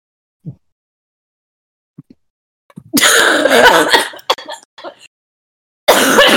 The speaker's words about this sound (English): Oh my god. Are you okay? He told me, no. You set off my bronchitis cough.